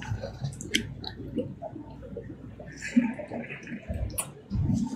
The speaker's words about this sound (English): Oh, sorry. Gotta wet my whistle. I was smart. I brought two water bottles, or two containers of water anyway, so I wouldn't run out this time.